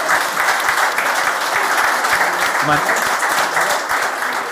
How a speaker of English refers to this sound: A big thank you for driving all the way up here and being brilliant this evening. A round of applause, please, everybody.